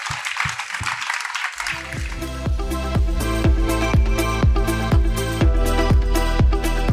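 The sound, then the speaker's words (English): A burst of audience applause for a panel of speakers, dense and crackling, fills the opening second and a half before upbeat music with a steady thumping beat comes in and takes over. “A huge round of applause for all of our panelists.”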